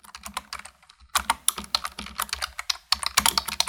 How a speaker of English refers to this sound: It's a quiet summer night in 2010, and some nerd with the username Roko is typing away. He's working on a post for the forum Less Wrong.